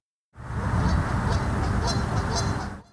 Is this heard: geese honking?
yes